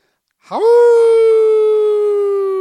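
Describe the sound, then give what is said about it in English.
A man's voice imitates a wolf howl: a single sustained cry that swoops up from low pitch, then holds a steady, loud, rich tone for about two seconds before slowly fading. “That's my wolf cry.”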